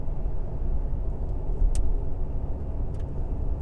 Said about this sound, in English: Come on, little Dodge truck. You wanted to go so fast earlier. Now you're wimping out. What's the deal?